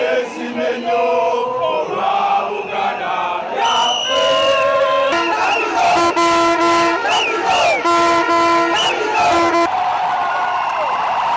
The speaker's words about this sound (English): Traders here at Kubo and Chiseka markets spent the past 2 days celebrating as they prepared for the Kabaka's visit. The mammoth crowds woke up to drum beats, dance, chants and singing praises for the Buganda King.